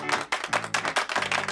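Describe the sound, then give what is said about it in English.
A short burst of applause: a steady run of loud, crisp claps about five per second, with a faint low hum underneath and no voices. “Yeah, big round of applause.”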